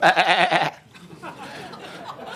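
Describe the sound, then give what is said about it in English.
A single loud, quavering sheep bleat lasts under a second, then gives way to quiet background noise. “But sheep, they just can't do anything. They're completely defenseless. I mean, the summary of their defensive system is this.”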